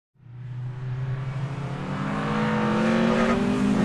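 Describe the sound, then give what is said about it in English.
Race car engines roar to life and rev steadily higher, a loud, sustained mechanical whine with rising pitch that builds in intensity over a few seconds, with no voices. “Superintendents, start your engines.”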